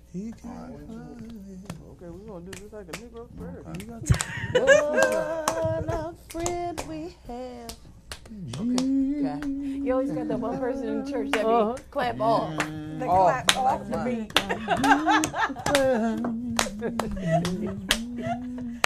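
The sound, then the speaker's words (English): Sharp, loud hand claps land at uneven, off-beat moments while a voice sings a slow, wavering church-style melody, the claps scattered irregularly through the tune. “They clap off the beat.”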